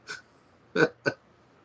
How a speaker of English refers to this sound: You okay? Yeah, I'm coughing for some reason.